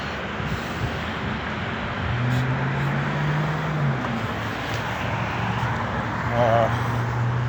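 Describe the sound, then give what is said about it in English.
Steady street traffic of cars and bikes rumbles past, a broad wash of engine and tire noise with a low droning hum that swells midway, as faint background voices murmur. “Let this nice couple walk by. Cars. bikes.”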